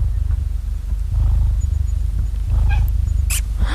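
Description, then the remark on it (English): A cat chattering at prey in rapid, low, pulsing bursts, fairly loud, with a few brief higher squeaky chirps near the end and no one talking; the cat wants to hunt and is preparing its posture to jump. “Ah, they're chattering. Yeah. Yeah, when they're like want to hunt, and then when they're like preparing the posture to jump.”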